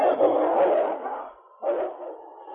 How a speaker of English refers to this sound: That's not a wolf, it's a husky. He jumped the wolf.